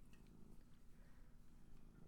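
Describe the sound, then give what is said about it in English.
A female cat purrs steadily and softly, a continuous low rumbling throb with a faint fluttering rhythm that runs unbroken for the whole couple of seconds, with no voices. “Can you hear her purring?”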